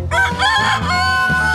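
A rooster crows loudly and close by, a long wavering cock-a-doodle-doo, with other chickens clucking and calling underneath in a busy, echoing space.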